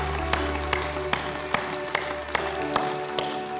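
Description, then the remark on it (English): A group claps in unison as a hand clap of praise to the Lord, eight sharp, steady beats about every half second, over a sustained held musical chord. No voices are heard. “Let's just give the Lord a hand clap of praise right now for what he's done in people's hearts and lives this morning.”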